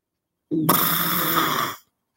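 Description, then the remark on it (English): A voice imitates a fart that sounds like a cup scraping across a desk: one steady, raspy, buzzing sound lasting just over a second, loud throughout before cutting off abruptly. “you want to take a stab at what the cup scraping on desk fart would sound like?”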